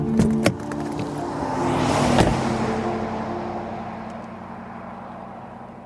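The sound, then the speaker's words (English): A car engine hums steadily with a low droning tone, a few sharp clicks at the start, then the rumble gradually softens and settles as the car pulls over and parks in a roadside cutout north of mile marker 35 in Josephine County, southern Oregon. “So I'm gonna pull over north of the mile marker, where there's a little sort of cutout in the road where it's safe to park.”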